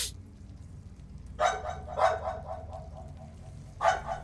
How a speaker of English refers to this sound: So you guys round a few corners and keep moving down. And as you round a corner, you hear barking.